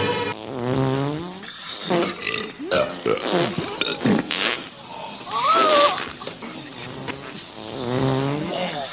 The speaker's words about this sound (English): 10 o'clock, each member of this board will have an involuntary gastric eruption. So they all sit there for a very tense few minutes where they're all looking at each other and sweating. And then they all start burping and farting.